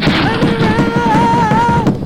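Hands pound a table in a fast, steady drumming of dull, loud thumps, with a sustained wavering tone ringing over the beating throughout.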